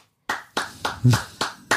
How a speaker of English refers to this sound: Why is she clapping? Okay, I don't know. I didn't know how to respond.